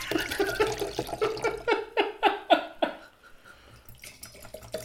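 Red wine, a 2017 Voyageur blend from Alexis Bailey Vineyard in Minnesota, glugs from a bottle into a glass in a quick run of rising, hollow gurgles, clear, before thinning to a soft trickle. No one speaks.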